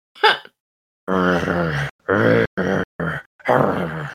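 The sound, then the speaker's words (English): A voice imitates two growling hounds behind a door to the north: a short breathy gasp, then a series of loud, low, rumbling growls and snarls in several bursts, like two dogs growling in turn. “From the door to the north, you hear some growling. Two sets of growling.”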